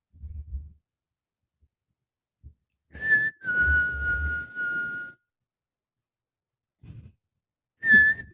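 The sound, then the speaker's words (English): A person whistles for help: a few sustained, steady tones, one long note held for a couple of seconds, then a short sharp whistle, with soft low thumps and breathy pauses between. No talking. “With a pipe in his butt. Whistling for help.”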